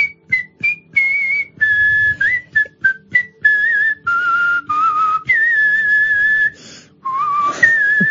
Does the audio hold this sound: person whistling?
yes